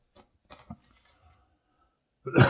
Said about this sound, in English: Okay, excuse me. No, that's not coronavirus. That's just a cough.